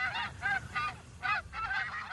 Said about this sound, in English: Here's the geese.